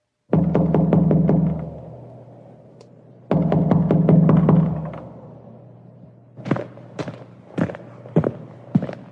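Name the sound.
knocking on a door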